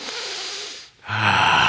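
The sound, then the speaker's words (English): A crowd of people draw a deep breath together, pause for a moment, then let it out in a long, airy exhale with a faint hum of voice. “Breathing is a good option.”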